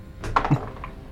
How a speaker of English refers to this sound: Ooh, hot 7 off the dice. Does come up to a 23, though.